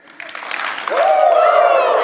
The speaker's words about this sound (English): If you're ready to learn about the Lord this morning, I'm going to need two good claps and a Ric Flair.